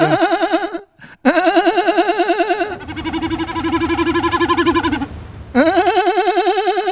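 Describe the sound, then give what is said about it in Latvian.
A voice imitates the drumming wing sound of a common snipe flying over a field: a loud, wavering bleat-like hum with a rapid pulsing tremolo, broken by short pauses over about seven seconds. “Bet ir spārni. Nu, piemēram, mērkaziņi.”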